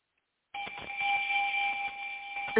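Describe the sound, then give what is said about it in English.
A bright electronic bell tone, played on a call-in show to welcome a first-time caller, rings out after a brief silence, holding steady with a sustained shimmering ring for about two seconds, with a faint clatter of accents toward the end. “you get the bell.”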